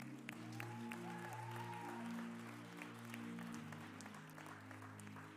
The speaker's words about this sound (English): So, thank you, guys. God bless you guys. Please clap for them.